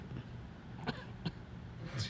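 Two short, sharp coughs about a third of a second apart, followed by a rougher throaty burst near the end, over a low background hum.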